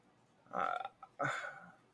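Two loud burps in quick succession, each a short throaty rumble with a brief pause between them and no talking around them.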